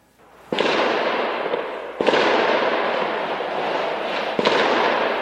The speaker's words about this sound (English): French police targeted terror suspects in an early morning raid that brought gunfire to a Paris suburb.